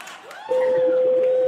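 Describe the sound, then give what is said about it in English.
A car horn, honked by the driver during a drive, sounds one long, steady honk with a thin, doorbell-like tone, not very loud, holding a single mid pitch over a low background murmur until the end. “Can you honk the horn as proof that you're actually driving?”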